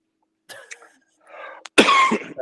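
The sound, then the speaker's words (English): A person coughs several times: a rough cough, a softer throaty one, then a loud, harsh burst to finish. No talking, just the coughing fit. “Stop coughing over there, man.”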